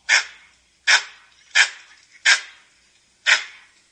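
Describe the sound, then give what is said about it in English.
A langur monkey gives five loud, harsh alarm calls, short barking bursts spaced under a second apart, with a slightly longer pause before the last. No one talks over them. “if you guys want to hear a langur call, this is an example of like a more of an alarm call.”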